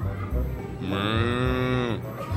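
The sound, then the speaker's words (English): A person imitates a cow with one long, loud moo lasting about a second, its pitch slowly sliding, set against a murmur of background noise. “Who is that cow?”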